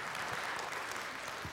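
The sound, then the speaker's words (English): A crowd claps together in a steady, dense burst of applause given as praise to God, sustained and fairly loud throughout, with no voices standing out above the clapping. “Let's give Him a hand clap of praise for that.”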